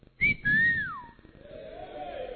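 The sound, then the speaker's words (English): A person whistles two clear notes: a short high chirp, then a longer tone that slides downward. It is fairly loud, followed by a soft background hum, with no one speaking. “You go and hide there. And then you have come out with a whistle.”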